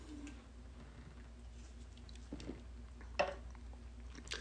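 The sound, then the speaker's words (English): Quiet mouth sounds of someone sipping beer: a few soft wet clicks and a brief slurp-like swallow over a low steady hum, with no talking. “I'm gonna take a quick sip break.”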